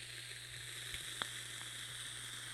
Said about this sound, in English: I like getting a little bit of crackle from a billet box coil. It's very cool.